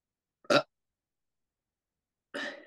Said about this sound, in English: And with that, I burped.